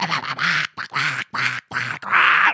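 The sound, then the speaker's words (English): A person squawks out a rapid string of buzzy, nasal syllables in a Donald Duck voice, about five loud bursts separated by brief gaps, imitating a quacking duck. “He talks in a Donald Duck voice.”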